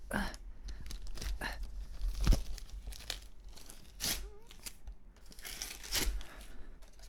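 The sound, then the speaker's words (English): Loud ripping and crinkling of taped gift wrapping paper being torn open from a present in several bursts, with sharp tearing strokes and rustling crumples in between. “Oh, how much tape? No, I didn't overly tape it.”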